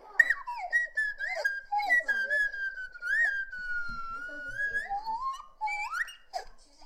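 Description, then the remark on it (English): A slide whistle, played by Andy Dick, plays a wavering, gliding birthday song in a continuous stream of swooping notes, bending up and down in pitch, loud with no talking. “Andy Dick giving you a little slide whistle, birthday song, and you were in bed.”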